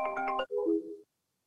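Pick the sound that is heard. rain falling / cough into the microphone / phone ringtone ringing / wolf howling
phone ringtone ringing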